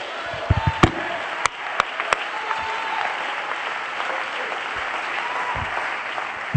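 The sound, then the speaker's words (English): A church audience applauds steadily while being seated, a dense wash of many hands clapping, with a few sharper, louder individual claps standing out near the start. “Come on, just clap your hands one more time when you're seated.”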